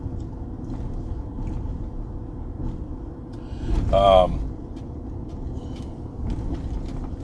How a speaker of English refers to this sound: Look, here's the motorcyclists. They're on like a crotch rocket, riding double.